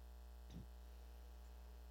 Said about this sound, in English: Thank you, air conditioner.